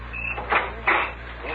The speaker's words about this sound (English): Open the door.